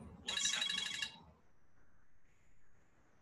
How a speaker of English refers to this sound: You know, apologies, I've just had a phone call come in.